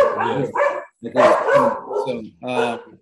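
Several dogs bark and yowl in a loud, close burst of overlapping, rough calls, coming in four or five uneven bursts with short gaps between them.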